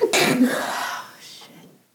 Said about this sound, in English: sneezing